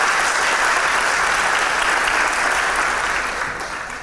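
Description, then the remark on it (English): An awards ceremony audience applauds as an award is accepted on behalf of a Waitrose team: a dense wash of many hands clapping at once that holds loud and even before gradually thinning and fading toward the end. No one speaks over it. “And to accept the award on behalf of the team, who can't unfortunately be here, but maybe online, so please also clap for our online”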